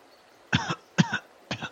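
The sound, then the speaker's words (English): Three weak, breathy coughs in quick, even succession, voiced by someone acting out the feeble coughing of a wounded man as a little blood comes out of his mouth. “he does that coughing, like a little bit of blood comes out of his mouth,”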